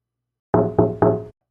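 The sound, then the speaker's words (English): Three quick, evenly spaced taps on observation room glass, each a firm knock with a short resonant ring, heard alone with no voices. “They tapped on the glass and waved at me.”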